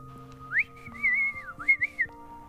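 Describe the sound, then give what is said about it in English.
A short whistled melody into a microphone, fairly loud, with a few gliding rising and falling notes over soft sustained background tones. No one speaks. “she would like you to whistle into the mic and flash your tits.”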